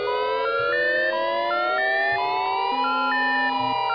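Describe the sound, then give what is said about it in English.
A loud, continuous civil defense attack warning siren drones with a slowly climbing, wavering pitch, layered with steady tones that step up and down. It is the standard signal that an enemy attack has been detected. No one speaks. “In most places, the standard attack warning signal is a 3 to 5 minute wavering sound.”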